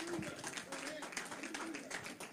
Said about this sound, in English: Give the Lord a hand clap of praise if you love his word. Amen.